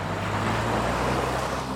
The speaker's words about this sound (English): So I just picked up what I could, threw everything in the car, and took off toward West L.A.